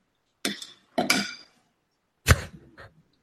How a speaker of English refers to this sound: What did he just like make pasta? What happened here? I think he just slapped a spoon or something.